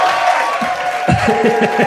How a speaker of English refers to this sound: round of applause for Andy hitting his head, everyone